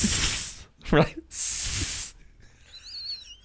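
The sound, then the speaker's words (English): A person imitates a snake with two long, loud, breathy hisses, split by a brief voiced grunt, followed by faint high-pitched chirping in the background. “Because this is, I fake the snake on anything, dude.”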